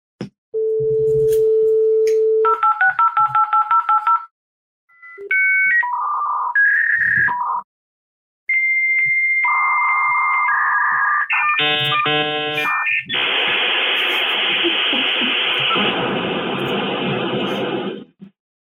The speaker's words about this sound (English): This goes back to my youth. That yes. would be a modem connecting online, often to a BBS, bulletin board service, like a CompuServe, right? Absolutely. Yes.